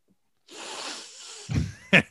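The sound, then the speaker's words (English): A long, airy inhale through the nose as someone sniffs a Sharpie marker pen, followed by two short, louder snort-like bursts. No one speaks. “Just sniffing on a Sharpie.”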